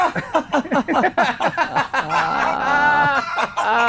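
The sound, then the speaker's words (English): A person's laugh, edited: a rapid run of choppy, high laughing bursts that cluck like a hen, then stretch into a drawn-out, warbling squeal, loud with no talking. “So okay, the beauty of doing this is your laughs often sound like other things, and I can edit the laugh to just make it sound a bit better.”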